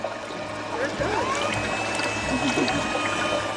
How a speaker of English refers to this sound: It's going to dip down in there and drop that sample into what looks like a little refrigerator. The tiny bit of brownish water drops into a clear container about the size of a milk jug.